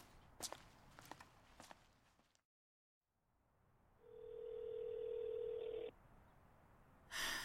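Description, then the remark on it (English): Footsteps shuffle, then after a brief silence a single steady electronic ring tone sounds for about two seconds, like a phone line ringing while waiting for someone to answer. “pick up the fucking phone already.”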